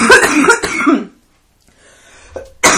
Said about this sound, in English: Whew. There's cough, y'all.